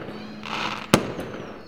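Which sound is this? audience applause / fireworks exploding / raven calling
fireworks exploding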